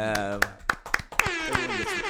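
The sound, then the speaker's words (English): About six sharp hand claps in a loose, steady rhythm, with people talking and laughing underneath throughout, celebrating a platinum trophy earned in God of War Ragnarok. “I mean, we can do the clap.”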